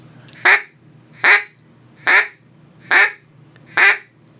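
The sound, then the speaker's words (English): Five evenly spaced, loud basic quacks blown on a duck call, each a short nasal burst with a falling tail, repeated at a steady rhythm with no talking. “It's just the basic quack.”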